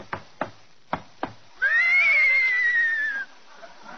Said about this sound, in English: Somebody riding into the studio on a horse.